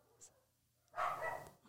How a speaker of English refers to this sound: Sorry, everyone's barking. And by everyone, I mean the neighbor dogs in Paris, not us.